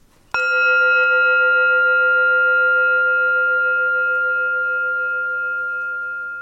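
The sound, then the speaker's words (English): A single gong strike rings out loud and clear, its bright metallic tones sustaining and slowly fading over several seconds with no one speaking. “Right, I'm going to ring my gong, boys, and then we have our final words.”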